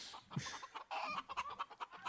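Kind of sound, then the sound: sound effect, chicken clucking sound effect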